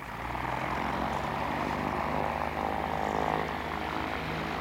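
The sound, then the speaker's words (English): A small Cessna propeller plane, loaded with boxes, takes off from a runway, its engine droning loudly and steadily throughout, a dense, even roar with a low throbbing hum underneath, with no voices. “Together, we quickly loaded the plane, then strapped in and took off.”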